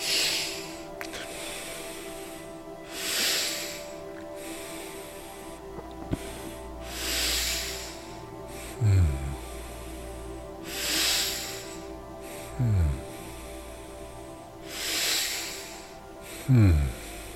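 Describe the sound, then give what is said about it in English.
Slow, deep breaths during a breathwork exercise repeat steadily about every four seconds, each a loud airy rush, over a low steady hum with occasional soft rumbling swoops. “Is keep on breathing.”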